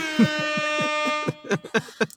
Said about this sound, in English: Woo! Sound that air horn.